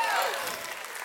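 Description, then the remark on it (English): The Rock Church audience applauds the staff's safe return, a dense, steady wash of many hands clapping at an even volume for about a second, with a faint trailing voice tone at the start. “And so we need to clap it up again for that.”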